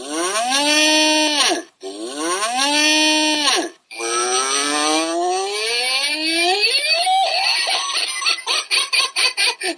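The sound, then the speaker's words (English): A loud cow mooing sound effect: two drawn-out, arching moos, then a longer gliding moo that breaks into rapid, pulsing bursts at the end. No talking is heard. “Which really wasn't mad cow, but there wasn't a sound effect for whatever.”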